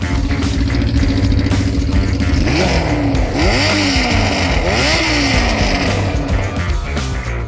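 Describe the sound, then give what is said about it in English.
A 1982 Yamaha Maxim 550 motorcycle engine runs loud, idling steadily before three quick throttle revs that climb and drop in a rhythmic sequence, then settling back to a rumbling idle. “Those were bike sounds. Landon's 1982 Yamaha Maxim”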